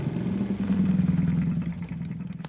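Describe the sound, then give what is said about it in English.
A scooter's small motor engine hums steadily as it rides up, its low pitched drone holding fairly even with a slight pulsing rhythm before easing a little near the end. “Shortly after Grammy left, Little Red came along riding her scooter.”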